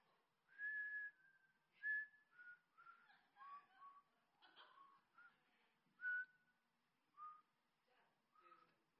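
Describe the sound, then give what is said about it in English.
A person whistles a slow, simple hymn melody alone, with clear sustained notes and short pauses between phrases, sounding fairly quiet. “I didn't feel like singing, so I started whistling it like this.”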